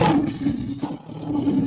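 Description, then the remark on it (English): A lion roars loudly: a deep, growling roar held for under two seconds, with a brief dip partway through before it swells again. No one speaks over it. “Was that a lion? That was a lion.”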